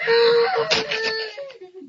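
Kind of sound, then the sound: human body sound, scream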